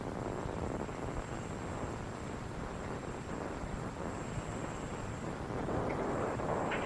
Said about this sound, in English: I believe it because I'm getting static. Let me go on this phone, because I can never hear on this phone.